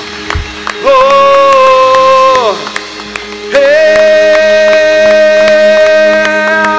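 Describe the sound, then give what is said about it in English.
A church audience claps steadily along under loud, sustained sung notes during a worship service on 24 March 2019. Scattered voices and a few whoops are mixed into the full, reverberant sound. “And the saints say, and the saints say, come on, let's give him a hand clap. Oh, let a sound out.”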